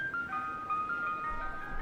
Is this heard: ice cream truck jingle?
yes